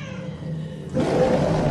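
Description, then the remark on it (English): A low, growling rumble swells abruptly into a loud, harsh bear roar sound effect, played as a cue at a live comedy show, that holds steady to the end, forceful, with no talking. “Aw, that means wrap it up then, or else you're going to bring out the angry West Hollywood bear.”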